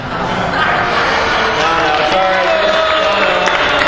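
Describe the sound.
A crowd in Dubuque breaks into steady, loud applause after a joke about lawyers and the cold weather, carrying through the whole stretch, with scattered cheers and murmuring voices mixed into the clapping.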